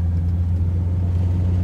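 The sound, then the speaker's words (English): Steady low rumble of road noise inside a moving car driving home near midnight on Father's Day evening, recorded on a phone, a constant engine drone and tire hum with no talking, even and continuous throughout. “It's been quite the day, and I'm recording this episode from my phone in the car.”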